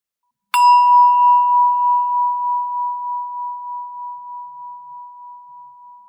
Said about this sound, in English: Every time you hear the bell, notice where your attention is.